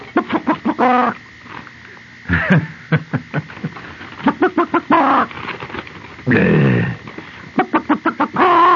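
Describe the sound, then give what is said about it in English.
A chicken clucks in quick, rhythmic bursts, broken by a few loud, drawn-out squawks. It is fairly loud, with no talking. “That's a chicken about to lay a square egg.”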